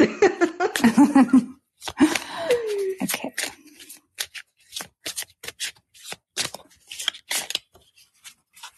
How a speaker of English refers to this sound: I'm so soothed by the sound of the cards. My shoulders drop an inch every time you shuffle.